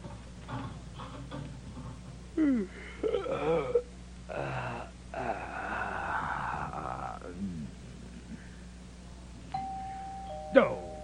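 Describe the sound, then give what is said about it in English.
Voices talk for several seconds, then near the end a doorbell rings at a family home, a sustained electric tone with a sharp ding, clear. “Oh, I knew it. Doorbell's ringing!”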